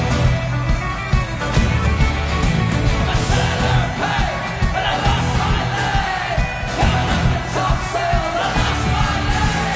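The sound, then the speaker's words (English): A loud, dense rock song from the film The Departed plays continuously. It is about a pirate losing his leg, and a group of voices shouts the refrain "I lost my leg" at full volume over driving instruments, steady for the whole stretch. “It's about a pirate losing his leg, and they're screaming at the top of their lungs, I lost my leg!”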